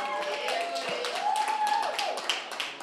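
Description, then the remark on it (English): An audience at the Ride Along Comedy Show claps steadily for about three seconds, a dense, even patter of many hands, with a faint rising and falling whoop or whistle drifting over the applause midway. “Come on now, clap that shit up.”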